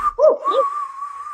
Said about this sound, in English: I mean, you guys are sticking your fingers in your mouth and. Okay, I can't whistle. Period. You just whistled. That's not really a whistle.